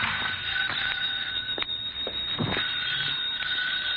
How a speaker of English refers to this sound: My phone was ringing when I got there.